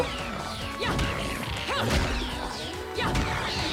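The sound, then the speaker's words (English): Video game punch and kick combo hits, made by combining punches and kicks: a rapid series of sharp smacks and whooshing swipes land in clusters over a busy, continuous game soundtrack, loud, with no one talking. “You can do combos by doing punches and kicks in combination.”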